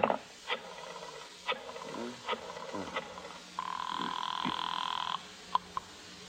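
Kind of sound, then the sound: household object, telephone ringing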